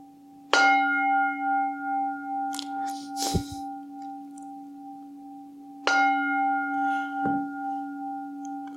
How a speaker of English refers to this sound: and ring the gong 3 times, you can open your eyes when you're ready.